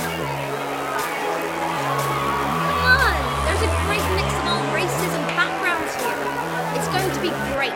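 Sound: crowd chatter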